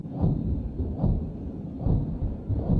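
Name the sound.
explosions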